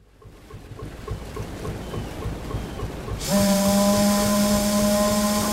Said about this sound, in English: We're entering Moloka'i Harbor, Father Damien. A steamer will drop anchor and then we'll take a boat into shore